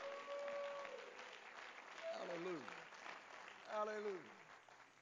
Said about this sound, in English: Come on, clap your hands unto the Lord because you know it's right.